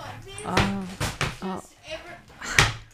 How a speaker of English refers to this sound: They're shutting the cupboard doors and opening drawers and it's odd. It's odd that they need to do that much opening and closing at that time of night.